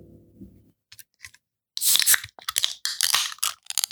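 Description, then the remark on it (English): A beer can being cracked open: a low hum and a couple of faint clicks, then a loud run of sharp, crackling, hissing bursts lasting about two seconds. No one speaks. “I'm getting some hoppiness right off the bat as soon as we cracked it.”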